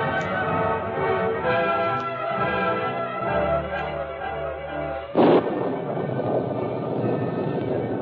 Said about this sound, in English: High in the mountains, storm clouds emptied upon the rocks and crags below. It was a storm that endured for several days.